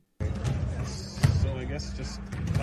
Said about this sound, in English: So you're going to hear like balls bouncing in the background and all that stuff, but let's roll the clip.